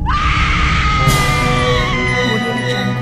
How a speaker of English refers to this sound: Okay. Now it's time for Women Screaming!